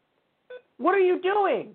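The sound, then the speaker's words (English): An old laptop beeps during a live broadcast: one short electronic tone, then two longer warbling tones that bend in pitch, fairly loud, with no talking over them. “I'm going to unplug this because it's going to beep nonstop.”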